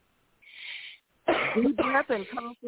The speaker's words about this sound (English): Take a deep breath and cough from your gut.